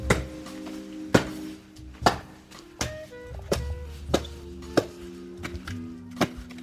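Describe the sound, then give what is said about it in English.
A small axe chops wood on a home patio in Kyiv, Ukraine, to fire up a grill: about seven sharp, cracking strikes at an uneven pace, roughly one per second, over a faint steady hum, with no talking. “he's chopping wood with this little axe.”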